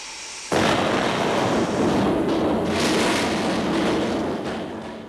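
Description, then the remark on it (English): After a brief quiet moment, a loud, dense crackling hiss erupts all at once and holds steady for several seconds, like sausages sizzling hard in a hot frying pan, then tapers slightly. “Well, I will just pop them into this nice boiling hot frying pan.”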